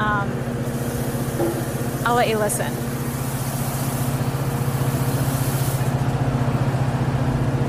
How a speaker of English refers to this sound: So there's all these chains and pulleys being moved around. It's windy out.